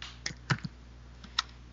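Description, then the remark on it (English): Several quick computer keyboard keystrokes tap out in an uneven rhythm, a cluster of clicks followed by a pause and a couple more isolated taps, with no voices. “What are you typing on your body computer?”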